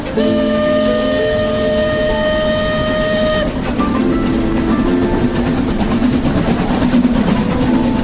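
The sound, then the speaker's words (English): A train horn blares steadily for a few seconds, then gives way to the loud, continuous rumble and clatter of a train rolling along the rails, with no voices. “All aboard! On the Night Train.”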